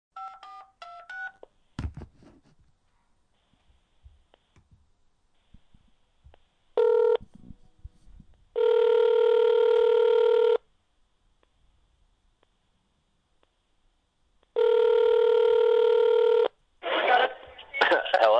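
A rapid run of touch-tone dialing beeps, followed by steady electronic ringback tones repeating in long buzzy bursts with pauses between, then a crackly line picking up, as a call is placed to a helicopter ski guide.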